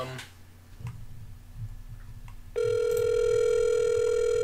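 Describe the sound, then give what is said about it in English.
A phone call ringing over a speakerphone: after a couple of seconds of quiet room noise and faint clicks, a loud, steady electronic ringing tone begins and holds to the end. “Hopefully this picks it up.”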